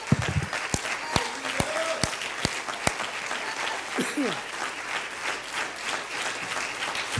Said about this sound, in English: And everybody said, come on, and everybody said, amen. Give God a big 10-second hand clap in the house right now.